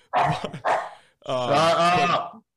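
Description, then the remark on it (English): A dog barks twice in quick succession, loud, then lets out a longer drawn-out, tonal bark that trails into a whine. “we got flies, we got dogs.”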